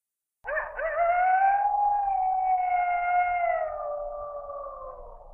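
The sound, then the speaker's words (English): A single long wolf howl starts abruptly, swells slightly in pitch, then slowly sinks as it trails off over about five seconds. It is loud and sustained, with no voices present. “And from around a rock that's kind of out in the distance, you see a cow-sized wolf creature come trotting over to where you are.”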